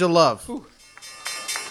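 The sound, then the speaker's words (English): A vocal exclamation opens, then bells ring faintly in the background, their sustained metallic tones shimmering and overlapping as a steady peal. “Oh, there's those bells. There's the bells.”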